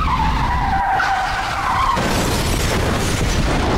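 A truck's tyres screech in a long, loud, wavering squeal for about two seconds, then a heavy crash hits and rumbles with noisy clatter until the end.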